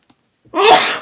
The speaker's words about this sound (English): You got to sneeze into your sleeve, not your hands.